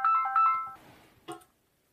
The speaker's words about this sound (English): My phone is ringing, and I think I know what this is. I have to take this phone.